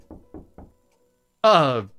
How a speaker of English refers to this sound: Knocking at my door at all hours.